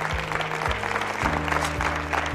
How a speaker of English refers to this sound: Can somebody clap their hands? Give the Lord a great big hand.